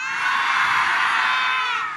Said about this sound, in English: How loud can you yell? Let's hear you go, "Ah!" 1, 2, 3. Well, that's kind of loud. Let's hear if we all do it. 1, 2, 3.